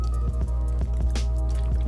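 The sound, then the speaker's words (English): Someone sipping water: a quick series of small wet gulps and soft mouth clicks, about half a dozen in under two seconds, over a steady low hum with no talking. “Taking a sip of some water.”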